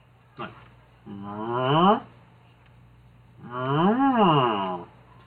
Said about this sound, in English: So, yeah, there's a lot of mooing in this episode. Yes, and it does go on.